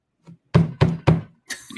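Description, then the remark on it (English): Three loud thumps in quick, even succession, a hand banging on a desk, bracketed by a couple of softer knocks. No one speaks. “So anyway, quit banging on your desk.”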